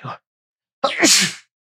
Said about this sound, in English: Sorry, I had to sneeze.